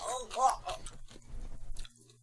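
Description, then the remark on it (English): A brief vocal sound gives way to a wet, crunchy bite and a quick run of chewing on a pickle, taken right after drinking a shot, loud and irregular, then it stops. “So we're going to shoot it and then take the pickle bite afterwards.”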